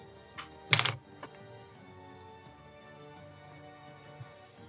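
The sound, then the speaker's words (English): Dice rattle briefly in a dice box, a quick clatter of small hard clicks flanked by a couple of single taps, then only a faint low hum remains. “I have too many dice in my dice box.”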